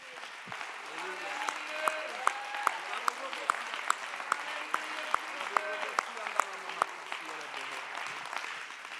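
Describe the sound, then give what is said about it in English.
An audience claps together in a steady, sustained round of applause to give the Lord praise after preaching, many hands sounding at once, with voices carrying underneath the clapping. “If you believe that preaching, amen, can solve problems, why don't you clap your hands and give the Lord some praise one more time.”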